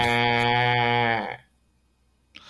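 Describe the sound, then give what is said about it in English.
A person imitates a sheep with one loud, drawn-out nasal bleat, "baa", lasting over a second, followed by near silence and a faint breath. “And the last one, a sheep.”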